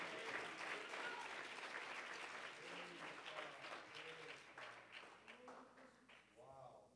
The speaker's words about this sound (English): Somebody clap your hands to the Lord and give him praise.